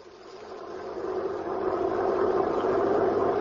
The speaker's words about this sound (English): The prison truck was driving along the road.